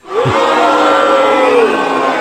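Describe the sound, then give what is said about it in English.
A large arena crowd at an NXT event lets out a loud, sustained collective boo at Toni Storm holding the NXT Women's Championship belt, a dense wall of voices holding one long drawn-out jeer for about two seconds, with no individual speech. “the segment basically ended with Toni Storm holding the NXT Women's Championship belt to everyone booing her out of the arena.”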